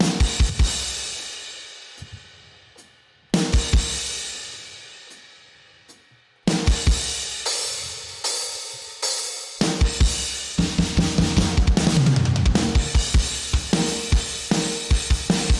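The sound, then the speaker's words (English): A solo drum track plays on its own: punchy kick and snare hits in a steady groove, with loud crash cymbals ringing out and decaying every few bars, growing busier toward the end. “Drums, let's take a listen.”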